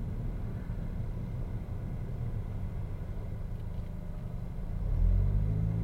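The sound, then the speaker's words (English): Deep, steady semi truck engine rumble heard from inside the cab of a big truck that people are living in, a continuous low drone that swells louder and more throaty near the end, with no voices. “Hey, yo, you drive this big-ass truck we're living in, there.”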